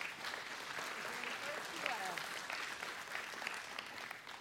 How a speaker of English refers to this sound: Y'all give them a hand clap of praise.